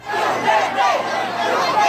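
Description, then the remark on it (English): A large crowd in Buluan Town, Maguindanao, cheers and shouts together at the arrival of Davao City Mayor Rodrigo Duterte, a steady, loud roar of many overlapping voices, with rising swells of yelling throughout. “This was the reaction of the crowd in Maguindanao upon the arrival of Davao City Mayor Rodrigo Duterte in Buluan Town.”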